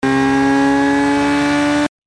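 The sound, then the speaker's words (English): A motorcycle engine holds a loud, steady, buzzing drone with strong harmonic overtones for about two seconds before cutting off abruptly, as E-77 rides through a large explosion at night while chasing a target in the busy downtown streets of Sanatorian. No one speaks. “E-77 drives his motorcycle through a large explosion”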